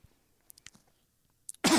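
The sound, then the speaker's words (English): Crunchy chewing of raw onion by the Grinch in a video put out by Universal: a handful of sharp, wet crackling bites scattered over a quiet background, ending in one loud, harsh crunch. “Okay, it's just him staring at the camera, wide-eyed, eating an onion.”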